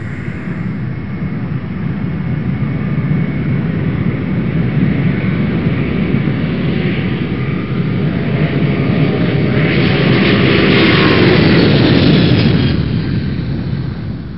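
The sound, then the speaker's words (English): A loud, steady airplane engine drone of an Air Titanic passenger flight fills the whole stretch, a dense low rumble with a roaring hiss that swells briefly near the end before easing slightly. No voices are heard. “Where's this plane headed?”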